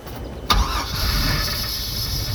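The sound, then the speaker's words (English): The small engine of a dory catches with a sharp crank and sputter, then settles into a steady idling rumble. “So you start the engine in your dory, and you head out to find the rum-running boat.”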